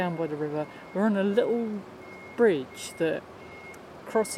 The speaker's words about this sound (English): and you can hear the reversing of a forklift truck in the background. There's a guy loading up a lorry with pallets,